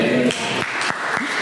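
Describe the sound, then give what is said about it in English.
A crowd applauds together, a steady wash of clapping with a few sharper, evenly spaced claps standing out, fairly loud, with a faint voice or tone underneath at the start, applauding Jesus after a Bible verse reading. “Can you applaud him?”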